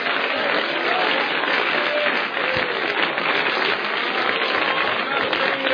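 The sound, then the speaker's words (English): An audience at a church service claps hands in praise of the Lord in a dense, steady wash of applause, loud and continuous for several seconds with a faint murmur of voices underneath. “Oh, let's give the Lord a hand clap.”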